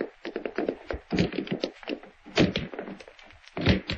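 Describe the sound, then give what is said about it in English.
A sheriff breaks down Mr. Wake's wooden door: heavy, dull thuds strike it again and again, with three especially loud blows standing out among smaller knocks and rattles. No voices are heard. “Break the door down, Sheriff.”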